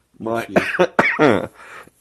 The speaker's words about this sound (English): Get it out. My cough was like all gone, and now that I have to talk. Now it's back.